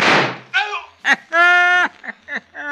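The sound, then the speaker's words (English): A single loud gunshot, fired at someone creeping up and hitting him, cracks out and quickly decays, followed by a voice letting out a few drawn-out, high exclamations. “I winged him all right. Yes, sir, I winged him good and proper.”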